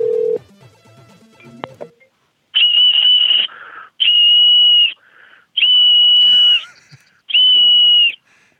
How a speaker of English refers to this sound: You're a very good whistler, sir. Will you be in my band?